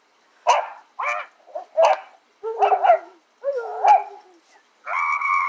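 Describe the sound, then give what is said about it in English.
A dog barks in a quick series of about seven loud, sharp barks, the later ones stretching into drawn-out, howling yelps, with no one talking. “for the fucking remainder of this episode, you get to listen to her dog attacker”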